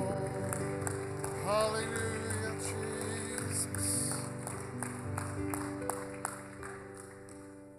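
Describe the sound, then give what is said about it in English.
A worship audience claps in a steady, rhythmic beat in praise to the Lord over sustained organ-like music, while a voice calls out exclamations above the clapping. “Why don't we clap our hands to the Lord? Give him some praise.”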